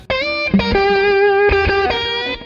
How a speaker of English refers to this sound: the most prominent effect on his guitar there is a delay, more so than the reverb.